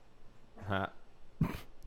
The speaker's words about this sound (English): Here comes the dog. Oh, goddamn Pepe. I don't even know why he let that bitch out of its cage. Oh, Pepe.